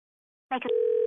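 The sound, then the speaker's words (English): A short click-like burst of noise, then a steady telephone dial tone after a caller hangs up, continuing loudly to the end. There is no talking. “He sounds like a dial tone.”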